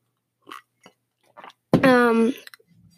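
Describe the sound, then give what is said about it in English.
A few soft, brief slurping sips of Kool-Aid-made hot chocolate by a person sitting at a desk, followed by a loud, drawn-out satisfied vocal "ahh". “I'm currently sitting at my desk, sipping some Kool-Aid-made hot chocolate.”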